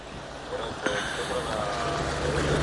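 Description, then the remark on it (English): A large ship passing on a canal: a steady low engine rumble under a broad wash of noise that swells slightly toward the end, with a brief knock early on. “There's another one here passing now, Ocean Odyssey.”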